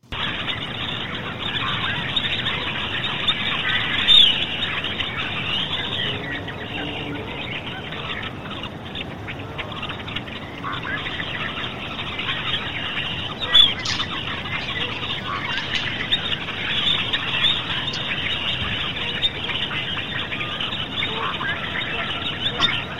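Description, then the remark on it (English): A dense, continuous chorus of many birds chirping and calling fills a muffled, low-fidelity recording made on an empty road, McElwee Road, with a faint man's voice singing somewhere beneath the noise. “There's a lot of birds in there, but you can actually hear a guy singing in the background on an empty road.”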